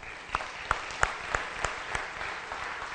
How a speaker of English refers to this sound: And I wanna offer a round of applause for the work that he's done bringing us to this point.